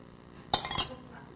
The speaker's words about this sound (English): And whoa, or you knock over your glass.